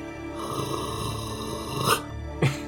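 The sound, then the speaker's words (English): A voice imitates the growl of the character Ferric: a low, rumbling growl sustained for a couple of seconds, ending with two short, sharper bursts. Fairly loud, with no other talking. “Ferric will growl.”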